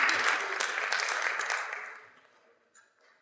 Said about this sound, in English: Please, one more warm round of applause, and then I'm going to come back up on stage and finish up the service here.